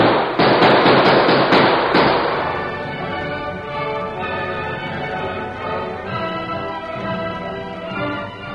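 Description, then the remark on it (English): A rapid volley of sharp, loud gunshots cracks out over about two seconds as men in a town open fire on people getting away in a shootout, then gives way to sustained orchestral music with no further shots. “Come on, let's sling lead at them.”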